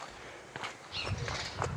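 Footsteps of someone walking home at a steady pace, a few soft thuds and scuffs landing roughly every half second over a low, continuous background rumble, with no voices.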